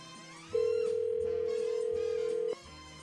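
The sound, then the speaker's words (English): A telephone ringback tone sounds once as a radio morning show places a call to a woman: a steady, loud electronic hum lasting about two seconds, with soft background music underneath and no talking. “we're gonna call up Chandler here. We're going to get her on the phone.”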